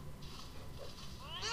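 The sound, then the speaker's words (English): A single short cat meow rises at the very end of a quiet stretch, a bright drawn-out cry that starts up sharply after a moment of faint background hiss. “Here's your cat.”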